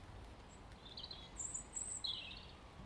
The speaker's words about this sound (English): I love robins for the same reason I love blackbirds, because to my ear, they sing with such variety. Even though I'm sure they're repeating quite a lot of elements.